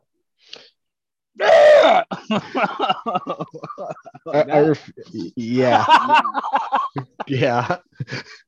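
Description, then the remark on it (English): A person mimics a raven's call with a loud, harsh, droning croak, followed by several more rough voiced croaks and chuckling sounds. “I feel like a raven's is a little more droning and narrow, like in sound.”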